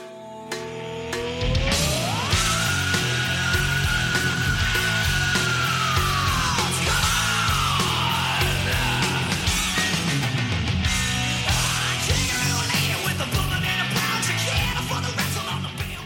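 A hard rock song plays loudly and continuously, with dense distorted guitars and pounding drums under a long, high, rising vocal scream that is held for several seconds.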